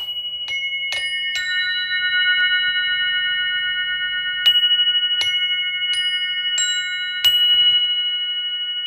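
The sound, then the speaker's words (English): Metal chimes ring out with a series of irregular bright strikes, each adding to a sustained shimmering blend of high, bell-like tones that hang and slowly fade, with no voices. “let's check these chimes out because these chimes are boss.”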